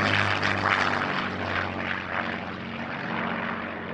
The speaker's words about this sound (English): an iconic and extremely important engine, the Rolls-Royce Merlin first flew in 1933 and went on to power some of the best-known planes of the Second World War.